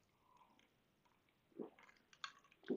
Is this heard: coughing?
no